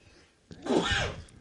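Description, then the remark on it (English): A single sneeze: a brief catch of breath, then a loud, breathy burst lasting about half a second before fading. “And again, we got the sneezes.”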